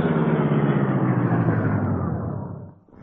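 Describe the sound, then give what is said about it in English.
A car engine rumbles loudly and steadily as the car arrives in the alley behind the Chesley place, then eases down and dips briefly before settling into a lower idle near the end, with no voices. “While the three crooks were discussing their plans in their car up the street, Britt Reed and Cato arrived in the alley behind the Chesley place.”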